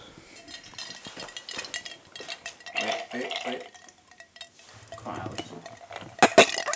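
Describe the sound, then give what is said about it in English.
Ice rattles and clinks against glassware during a toast, one glass holding nothing but ice, a scattered run of small chinks building to a couple of sharp, louder clinks near the end, with no voices. “you ain't got nothing but fucking ice in that, baby”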